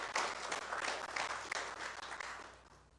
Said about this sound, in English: How is everybody doing this morning? If you're happy to be here, let's hear a hand clap for the Lord. If you're happy to be in church, yeah.